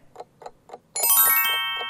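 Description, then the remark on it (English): A two-minute countdown clock for a quiz round ticks steadily, about four crisp ticks per second, then a bright sustained chime rings out while the ticking keeps going underneath, clear with no talking. “2 minutes are on the clock, and it starts now.”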